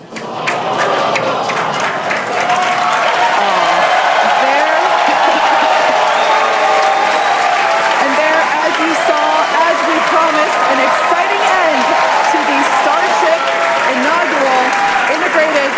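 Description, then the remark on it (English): The SpaceX team claps and cheers continuously as their rocket explodes over the Gulf of Mexico about 4 minutes into a test flight from Texas, with loud sustained applause mixed with excited shouts and voices. “Wait a second, it blew up. Why are they cheering? Why are they happy?”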